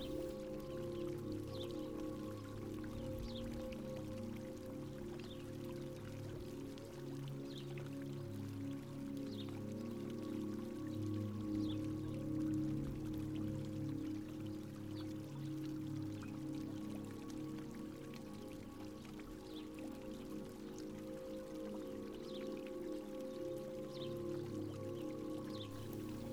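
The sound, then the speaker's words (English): Steady rain falls with a continuous splash of running fountain water, a soft, even wash of sound with scattered brighter drips, unbroken for the whole stretch and no voices. “The sound of the rain and the fountain are peaceful.”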